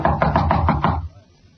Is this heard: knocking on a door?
yes